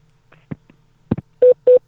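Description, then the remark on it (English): A few soft clicks of buttons being pressed as someone dials a phone call, then two short, loud telephone keypad tones in quick succession, each a steady electronic beep, with no talking. “Boop, boop. That's how you get stuff done. By what, Derek? Making a phone call?”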